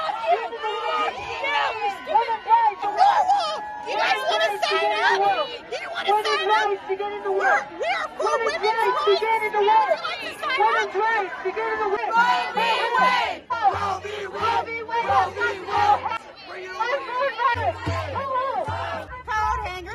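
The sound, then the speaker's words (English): A crowd of protesters at a Planned Parenthood protest at the Arizona State Capitol on Saturday, May 14, shouting and chanting loudly at pro-life counter-protesters, many voices overlapping in a dense, agitated roar that continues throughout with individual yells rising above. “Here's just one clip from what happened on the ground and the response of pro-aborts to pro-lifers who showed up to speak life to these depraved lunatics.”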